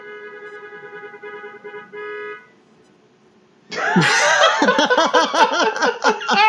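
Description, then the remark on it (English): After a steady droning tone and a short lull, birds of prey outside a window break into loud, rapid, squealing calls, rising and falling over one another in a shrill, laughing chatter. “That is Birds of Prey outside your window being like, no, I'm an icon.”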